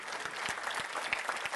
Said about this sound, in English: Somebody say amen, clap your hands or do something.